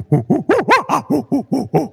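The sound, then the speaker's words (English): A person imitates a happy chimpanzee with about nine quick, loud, rhythmic hooting calls that climb in pitch toward the middle and then drop back down, with no other talking. “That was my rendition of a happy chimpanzee.”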